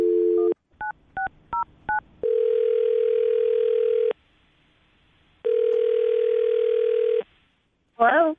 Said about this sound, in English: All right, here we go. I'll dial the phone number right now.